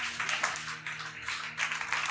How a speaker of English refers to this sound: Clap for him. Powerful question.